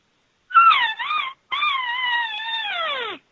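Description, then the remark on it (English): An estrus cow call imitated by mouth: a short, wavering nasal mew, a brief break, then a long, drawn-out whining call that sags in pitch at the end. Fairly loud, with no talking. “and that's an estrus call. That says, I am ready, come and get me.”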